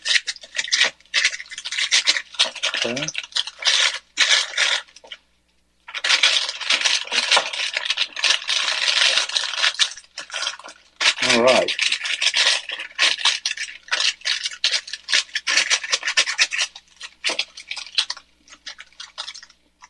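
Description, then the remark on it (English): Steady rubbing and scraping of an open-ended stick of butter being smeared across parchment paper lining an 8x8 pan for fudge, a broad papery swishing that runs in long strokes with a couple of brief pauses, fairly loud, with no talking. “I'm just gonna, it's a stick of butter, but the end is open. You know what I mean? Mm-hmm. So I'm just gonna run it around the parchment paper here.”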